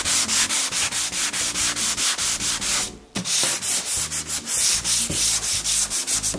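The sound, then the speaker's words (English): Steady back-and-forth hand sanding, done lightly on a first polyurethane coat on wood to knock off bubbles and high points, a rhythmic scratchy rasp repeating about three strokes per second, with one brief pause midway before the strokes resume. No one speaks. “We're not gonna sand real hard. We're just gonna knock off the bubbles and high points and give it a little bit of a tooth, run over with a tack cloth and give it a second coat.”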